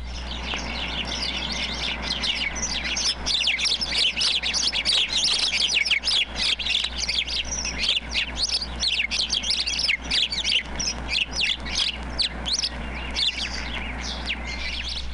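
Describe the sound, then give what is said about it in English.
A dense, noisy chorus of house sparrows chirping loudly and continuously, many overlapping calls, with a low steady hum underneath, during a display in which several males pursue a female and hop around her with drooping wings and fanned tails. “I've sometimes watched the strange sparrow display flights, in which several males pursue a female, and when they catch up with her, hop around with wings at the droop and the tail fanned out, calling loudly.”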